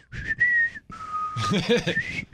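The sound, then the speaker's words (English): A person whistles a short, lively bumper-music tune, the bright pitched notes sliding and holding, with a brief burst of voice-like sound mixed in partway through. “Anyway, that was my bumper music. Need to wet that whistle.”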